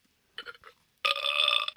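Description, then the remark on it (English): A short throaty lead-in followed by a loud, drawn-out wet burp lasting most of a second, with a gurgly, bubbly texture. No talking. “That's a very wet burp.”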